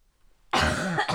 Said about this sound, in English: COVID gone, cough ain't. Whatever. Yeah. That's a thing. It's lingering.